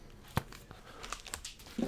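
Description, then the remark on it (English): A dog food bowl being shaken at food time to call a small female dog in, giving a few quiet, irregular rattles and crunchy clatters, like dry kibble knocking around inside. No one speaks. “She responds to it, so I just shake the bowl and then put a little bit in.”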